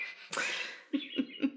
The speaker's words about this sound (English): And you're like, oh, there's the bird clock.